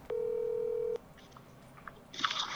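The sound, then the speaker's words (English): A steady electronic telephone tone sounds clearly for just under a second as a call is placed to a grandmother. It then cuts off, followed by faint scattered clicks and a short burst of crackly noise near the end. No one speaks. “So I decided to stop putting it off and just call my Trump-supporting Southern Baptist grandmother directly.”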